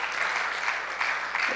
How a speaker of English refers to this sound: Man, you clap your hands. That's good stuff right there. Good stuff. That's good.